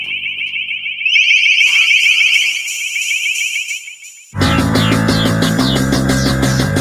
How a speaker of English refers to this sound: This is from 10 years ago. Listen carefully. This is a test of the long-range acoustic device LRAD.